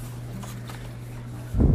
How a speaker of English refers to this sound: Thump, thump, thump. Stomp, stomp, stomp. The T-Rex hunts for food to chomp.